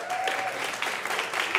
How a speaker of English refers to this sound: They're clapping for the artwork. Yeah, thank you. I know, this is radio. It's interesting to talk about artwork on radio, but they are clapping for the artwork.